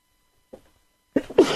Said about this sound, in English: Excuse me, I'm still sneezing from yesterday.